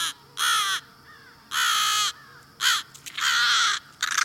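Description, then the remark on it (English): American crows cawing loudly while defending their nest and young, about five harsh, rasping caws in an irregular series, with no one speaking. “You're hearing American crows defending their nest, protecting their young.”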